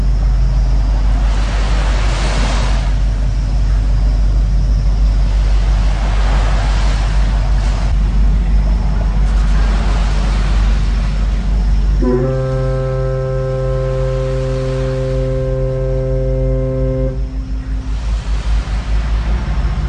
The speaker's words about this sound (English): Now, I've cheated a little bit there, as I've put the two foghorn sounds a bit closer together than they were, and that was just on my iPhone, which is a great little recorder. So there was fog in March 2022, sound of a boat engine and the foghorns.